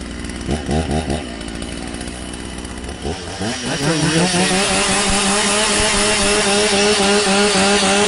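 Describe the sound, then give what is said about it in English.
A chainsaw sputters and revs in short bursts, pauses, then roars up to a sustained high-pitched whine, loud, with a broad crowd-like wash underneath, in the stadium at Oregon State on third down. “That's actually a chainsaw.”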